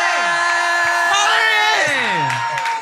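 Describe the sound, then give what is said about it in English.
A loud crowd cheers and whoops to bring a guest out from backstage, with many overlapping shouting voices and high rising and falling yells sustained throughout at steady volume. “Make some noise.”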